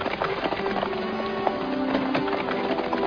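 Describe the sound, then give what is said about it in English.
A horse's hooves clip-clop at a steady pace as it is ridden along the banks of the River Bon, over a continuous rushing background, the hoofbeats moderately loud, with no voices. “On the day before their wedding, Scriven's fiancée rode out to meet him along the banks of the River Bon.”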